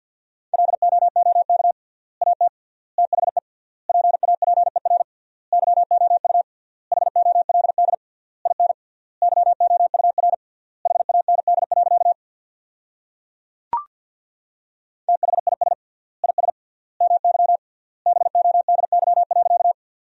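A single steady mid-pitched tone keys on and off in rapid bursts of Morse code at 50 words per minute, sending sentences from the top 400 words with triple word spacing, with a short pause and a sharp click partway through before the fast sending resumes. No voices.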